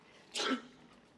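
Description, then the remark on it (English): A single sharp sneeze bursts out, a brief explosive breath that fades quickly into quiet, with no one talking. “Bless you.”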